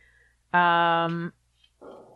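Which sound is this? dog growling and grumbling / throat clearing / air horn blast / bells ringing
dog growling and grumbling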